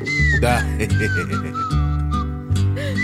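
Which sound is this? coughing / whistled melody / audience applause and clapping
whistled melody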